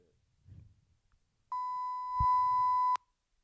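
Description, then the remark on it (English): A steady, loud censor bleep tone lasts about a second and a half, cutting in abruptly over a spoken swear word, with a faint muffled voice mumbling briefly before it. “That's not a technical problem. That's just me saying a bad word.”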